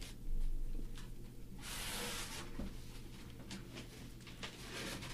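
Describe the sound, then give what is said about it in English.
Someone opens a cardboard box labelled as a cast iron cat paper towel holder: a loud tearing rip of tape, then scratchy rustling and scraping of cardboard flaps, with no talking. “But there's another box, so let me get into that.”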